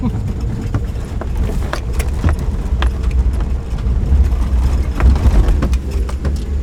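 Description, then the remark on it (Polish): A snowmobile engine drones steadily as it rides along the Padaki, an old FIS ski run still used by skiers and snowboarders, a loud low rumble with wind noise and scattered rattling clicks throughout. “Tu na skuterze trzeba bardzo uważać, ponieważ w dalszym ciągu jeździ się na nartach i na deskach.”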